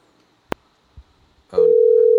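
A sharp click and a soft thump of a handset being handled for an outgoing call, then a loud, steady telephone dial tone begins and hums continuously until the end, with no voices.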